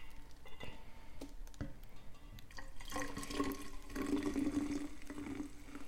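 Lemonade pours into a flask, filling about a third of it, a steady splashing stream with bubbly gurgling that grows fuller and louder partway through as the vessel fills and the lemonade froths. No voices.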